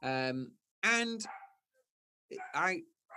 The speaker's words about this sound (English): The dog's having a good one here, barking away.